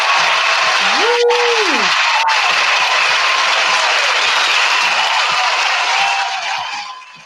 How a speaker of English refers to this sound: Thank you, audience, for still being with me and being so enthusiastic. Clapping. I appreciate that.